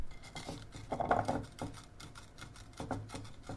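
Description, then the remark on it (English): A wooden spoon presses down and scrapes across the bottom of a pan of sugar being dissolved, making a series of gritty, uneven crunches as undissolved sugar grinds underneath even though it looks dissolved, with no talking. “If you're not sure if it's dissolved, by the way, just press the wooden spoon or whatever you're using down on the bottom of the pan, and if it crunches, it's not quite dissolved.”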